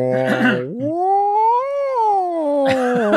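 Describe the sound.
A person imitates a humpback whale call with a long, wavering vocal moan that rises slowly in pitch, arcs over and sinks back down, framed by brief noisy vocal bursts at the start and end.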